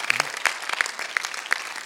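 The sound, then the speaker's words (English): A church audience claps together for Jesus, a dense patter of many hands with a few sharper, louder claps standing out at a steady rhythm. No one speaks over it. “If you want to clap, clap for Jesus.”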